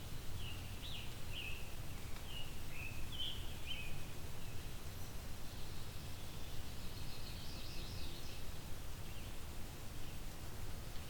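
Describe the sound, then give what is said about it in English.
A blue-winged warbler sings faintly, a few thin, buzzy high notes rising out of steady outdoor hiss and low rumble. No one is speaking. “There we go, blue-wing warbler.”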